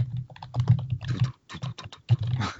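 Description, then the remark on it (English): Rapid typing on a computer keyboard, a dense run of clacking keystrokes that briefly pauses midway before resuming at the same busy pace. “Hey, man, keyboard ASMR.”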